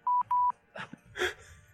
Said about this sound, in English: Your beeping button.